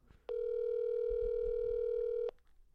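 A single steady electronic ring tone, heard while a phone call to a songwriter is being placed, holds one even pitch for about two seconds, then cuts off abruptly. Faint low rumbling sits underneath.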